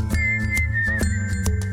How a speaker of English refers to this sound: Look, it's just the pure inanity of it. I mean, look at this idiot. Just whistling some nondescript tune.